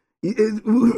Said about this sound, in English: Excuse me. Let me clear my throat.